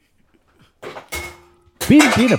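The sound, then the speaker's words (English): A cat knocks a bottle off a shelf and it strikes a radiator: a brief knock, then a louder metallic clang that rings on for a moment before someone starts talking. “Yeah, that was a cat knocking a bottle off a shelf onto a radiator.”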